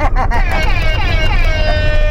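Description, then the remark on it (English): A loud, sustained air horn blares for about two seconds in a car at the start of the comedy game show Uber Funny Money, its bright layered tone wavering slightly in pitch over a steady low rumble. “Good things only happen after air horns.”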